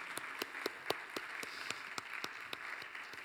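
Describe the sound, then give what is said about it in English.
An audience claps together in church, a dense wash of applause with sharper individual claps standing out in a rough, fairly steady rhythm, moderately loud and with no talking. “Want to clap? Let's clap. I like clapping in church.”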